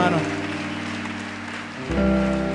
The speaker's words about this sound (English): I see one more lady coming. What a blessing this morning. Keep clapping for her too.